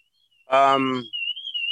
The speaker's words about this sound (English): There's a car alarm going. I thought it was another bird.